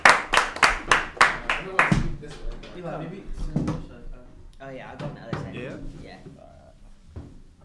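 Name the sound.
audience clapping and cheering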